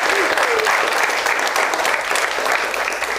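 A crowd applauds the grandparents in the audience steadily for a few seconds, a dense, even wash of many hands clapping at a constant loud level with no voices standing out.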